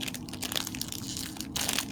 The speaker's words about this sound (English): Oh, who's cracking open a crunchy one? A crispy crunch, boy. Can you hear that? Can you hear that? Oh, this is bad. This is audio cancer. I'm gonna eat it right in front of the mic.